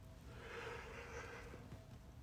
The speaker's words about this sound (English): Oh, Jesus. Sorry. I don't like, yawning's not a great look for, anyway.